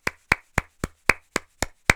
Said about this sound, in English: So I feel it's quite important that they get a little clap.